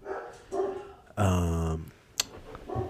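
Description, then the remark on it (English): Dogs bark at someone knocking at the door, a few short barks around one long, drawn-out bark, with a brief sharp click near the end. Nobody talks. “Oh, they barked at me knocking at the door.”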